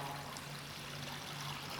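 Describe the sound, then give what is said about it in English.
A steady, fairly quiet stream of water being poured into a baptismal font, a continuous splashing trickle with no voices over it. “On the day of your baptism, water was poured into the font.”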